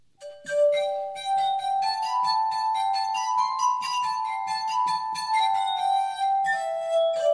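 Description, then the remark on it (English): The Irish traditional folk tune The Black Joke played on an instrument with clear, ringing, glassy tones, sustained notes gliding through a steady melody at moderate loudness, with no voices. “I will play today Irish traditional folk song, which is The Black Joke.”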